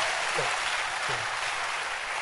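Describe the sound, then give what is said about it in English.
A church audience claps together during a service in a steady, dense wash of applause, loud and continuous throughout, with a faint voice or two murmuring underneath. “Clap for yourself.”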